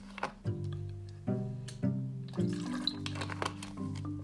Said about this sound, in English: I just got to have some water.